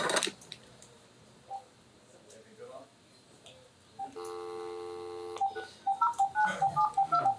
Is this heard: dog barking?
no